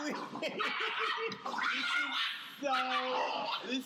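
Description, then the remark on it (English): A dog lets out a string of short yips and barks mixed with high, drawn-out whimpering whines, vocalizing almost continuously and fairly loudly throughout. “This dog. This is so good.”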